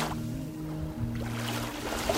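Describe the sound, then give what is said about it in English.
Waves of Lake Michigan washing and splashing in a steady, continuous rush, with a low droning hum running underneath and no voices. “The waves of Lake Michigan.”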